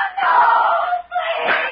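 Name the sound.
woman screaming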